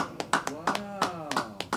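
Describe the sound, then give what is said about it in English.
Sparse, uneven applause from two people, sharp hand claps arriving in an irregular patter while someone talks over them. “Just because there's two of us, you applaud as long as you would if there was 200 of us.”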